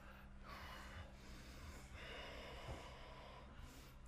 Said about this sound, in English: Good exhalations. Keep that. The master key to pranayama, breathing out.